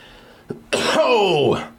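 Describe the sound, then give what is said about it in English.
A single loud sneeze bursts out after a quick faint catch of breath, its sharp noisy onset trailing into a voiced, downward-sliding tail before fading. “Let's get them sniffles out the way.”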